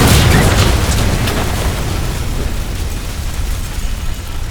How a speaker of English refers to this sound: But you did succeed on your piloting row, so you're able to at least get the plane to level out a little bit so it's not a complete dive into the canopy, and you guys crash.